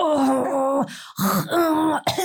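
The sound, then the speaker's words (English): A loud voice imitates exaggerated coughing: three drawn-out, groaning, throaty hacks separated by brief gasping breaks, with no other sounds around them. “I'm like, one, stop coughing like that.”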